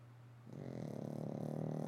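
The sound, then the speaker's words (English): A dog named Zoro snores while deep asleep in a low, rumbling drone that swells after a quiet start, steady, with a faint throaty buzz and no talking. “Okay, I don't know if you can probably hear Zoro snoring. He's deep in dreamland.”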